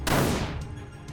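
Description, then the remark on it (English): A single loud gunshot cracks out sharply, then its echo rolls and decays over the next second, with faint rumbling reverberation underneath and no voices. “And suddenly, he hears a gunshot.”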